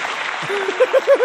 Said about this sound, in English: What's up, everybody? We're back again. We're back again. Why y'all stop clapping? Why y'all stop clapping? Thank you.